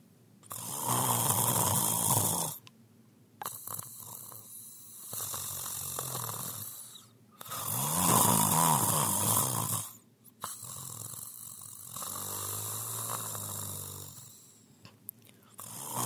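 A man snores loudly in his sleep, long rasping inhales alternating with quieter wheezy exhales in a slow, steady rhythm, close to the listener with no talking.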